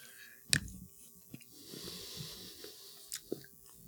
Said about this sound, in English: So what are we getting for flavors when we chew?